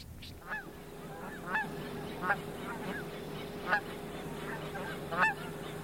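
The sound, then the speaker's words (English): Geese honk repeatedly as they fly in, a chorus of nasal, slightly squeaky calls rising and falling in irregular bursts over a steady low hum. “Traffic is just stopped watching the geese come in.”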